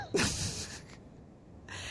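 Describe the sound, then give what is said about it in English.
A dog, Jack, sniffing at a cable in a living room: one sharp, loud nasal snort that trails off into breathy hissing, followed by a quieter stretch of soft air noise. No one speaks. “Jack is sneaking around the living room... sniffing at the cable.”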